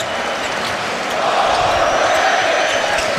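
A basketball arena crowd at game one between the Boston Celtics and the Miami Heat chants "overrated" at the Heat in unison, a dense roar of many voices that swells louder partway through and holds steady, with faint scattered bounces and shouts underneath.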